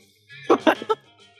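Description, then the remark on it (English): A short run of three rough coughs, moderately loud, with no talking around them. “microaggressions, sudden tattoos, hair trauma, liquidification, and coughing.”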